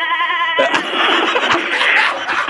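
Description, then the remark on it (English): A goat lets out a loud, wavering bleat as it is thrown from a catapult, which breaks off after about half a second into a rough, noisy burst of commotion that fills the rest of the moment. “There goes the goat.”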